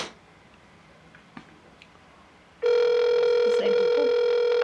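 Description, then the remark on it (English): After a quiet stretch with a few faint clicks, a loud, steady electronic phone tone starts abruptly and holds unbroken to the end, a buzzy harmonic hum of a call to a McDonald's waiting to connect. “Alright, no, they're not gonna answer because they're idiots.”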